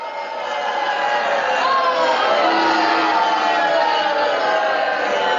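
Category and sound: crowd, crowd booing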